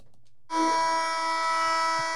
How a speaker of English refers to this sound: I really hate that buzzer.